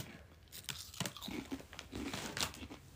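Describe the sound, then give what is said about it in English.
Crunchy chewing with repeated crisp, crackly bites and munches in an irregular rhythm, fairly quiet and with no talking over it. “Sorry, I'm eating.”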